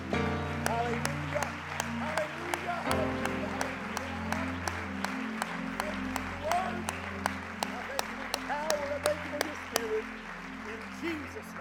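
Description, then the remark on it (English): A church audience claps their hands in praise to the Lord, sharp hand claps mingling into sustained applause with a low, resonant hum of voices beneath. “Would you clap your hands unto the Lord and give him the highest praise?”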